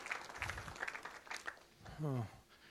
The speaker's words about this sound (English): Yeah, clap for her if you like.